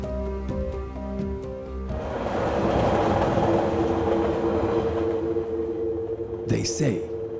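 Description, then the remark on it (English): A train rolls along the rails with a steady rumble and rhythmic clatter, rising in loudness after a couple of seconds, with a brief high squeal or whoosh near the end. “And, how did we get on a train?”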